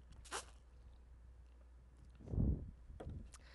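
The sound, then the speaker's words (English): Someone takes a quick sip of water: a brief airy slurp, then a soft, muffled gulp, followed by a couple of faint clicks like a cup being set down. “I'm going to make it even more dramatic and take a sip of water before I tell you what I'm going to confess.”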